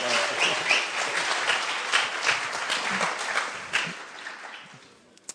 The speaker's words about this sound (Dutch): All right, why don't we put our hands together for these guys? Laten we een applaus geven.